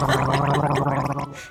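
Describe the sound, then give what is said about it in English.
A voice imitates a man rudely rinsing his mouth with water, gargling: a loud, steady bubbling rattle with a low throaty hum, held for over a second before cutting off abruptly. “Apparently he rinsed his mouth in a very rude and disgusting fashion.”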